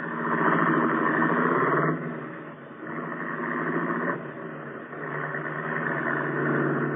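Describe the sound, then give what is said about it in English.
A car engine runs steadily throughout as the car turns around, its low harmonic drone dipping and then rising again as it revs, loud, with no voices. “Turn the car around and let us go home.”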